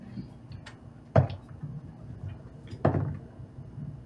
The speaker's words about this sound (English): The shooting intensifies outside, and one of the doors bursts open. A guy staggers through.